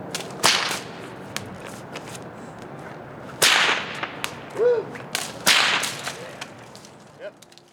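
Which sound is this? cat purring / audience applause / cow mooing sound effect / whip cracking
whip cracking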